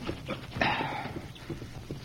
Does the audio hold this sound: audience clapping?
no